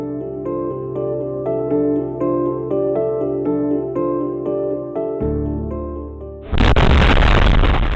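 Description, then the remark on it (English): Soft, steady musical notes play for several seconds, then a single loud industrial explosion, from industry next door to the John F. Kennedy neighborhood of Oklahoma City, erupts near the end, a heavy, roaring blast that drowns out everything else. “The sound of explosions is common in the John F. Kennedy neighborhood, one of Oklahoma City's oldest black enclaves.”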